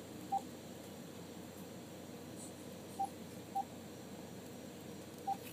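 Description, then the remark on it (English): Four short electronic keypad beeps sound at irregular intervals over a steady low background hiss, as someone dials a second phone number on a phone, with pauses between presses. “Brian didn't answer the phone, but he did put two numbers down, so I'm going to call this other number.”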